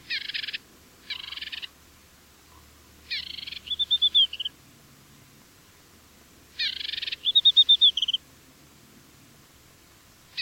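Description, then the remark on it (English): An African desert warbler, a pale cream-and-white Saharan songbird, sings in repeated phrases, each opening with a buzzy burst and ending in a quick, rhythmic trill of high, thin notes. The song is clear over a quiet background. “The African desert warbler lives in just the northwestern part of the Sahara.”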